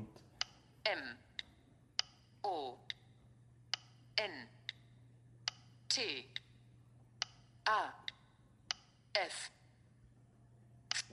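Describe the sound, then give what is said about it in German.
A woman's finger slides around a keyboard, typing a search term letter by letter in a slow, uneven run of sharp clicks, interspersed with soft breathy swooping sounds and a steady low hum beneath, no speech. “schiebt mit dem Finger auf der Tastatur rum, bis sie immer den richtigen Buchstaben hat.”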